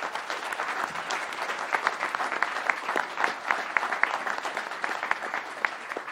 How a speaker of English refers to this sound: And also to the Game Cab guys as well for bringing their amazing simulator and their retro cabinet down into the LAN room. We've had a lot of fun with that over the weekend. Round of applause for those, please.